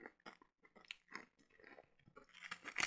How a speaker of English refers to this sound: I can hear the crunch from the chip, dude. No way. It sounds like you're eating a potato chip right now.